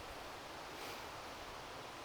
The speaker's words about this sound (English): You can probably hear the running water in the background of the River South Esk, next to where I live in Temple in Midlothian, Scotland.